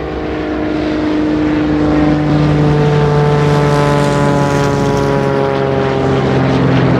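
A loud, steady drone of about 17 propeller bomber planes in a big V formation passing overhead in the Philippines, their layered engine hum throbbing and swelling slightly as they fly by, with no voices.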